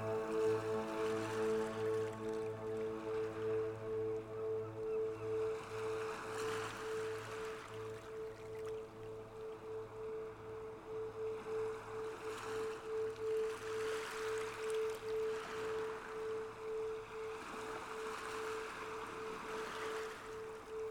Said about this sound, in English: Enjoying the ocean for a few minutes. Just allowing this visualization to deepen. You feel more and more relaxed as you enjoy the ocean.